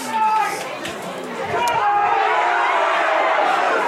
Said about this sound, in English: And the crowd trying to ref the game as always in these parts.